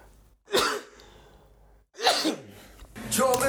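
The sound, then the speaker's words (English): Two sharp, explosive sneezes about a second and a half apart, fairly loud, followed by a brief breathy sound at the end. “The sneezing boy.”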